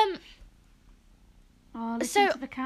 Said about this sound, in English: What I don't get is I've got a kitten on my lap.